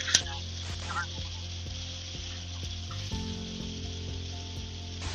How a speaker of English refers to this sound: It's raining. Oh, can you hear me? It is raining. I didn't know if you picked that up or not. It just started raining here too.